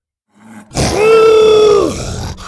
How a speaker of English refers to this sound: Out of nowhere, Buck sprang to his feet and pounced on the feathered dinosaur. Buck, no! Bo cried. The two dinosaurs rolled across the dirt, biting, clawing, roaring, hissing.